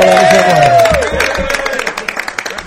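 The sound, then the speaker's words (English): A crowd cheers loudly for parents and alumni at a boys lacrosse event, with a sustained shout rising over the noise at first, then dense, rapid clapping and whoops filling the space as the applause carries on. “And so I want you to cheer on your parents, the alumni, the people that come out and see you and love you. Cheer them on right now, guys.”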